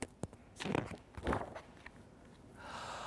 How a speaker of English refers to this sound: "I've brought honey nuts," badger says with a grin. "Let's divvy them up, cozy down and dig in." And they nibble and they munch with a chew, chomp, crunch.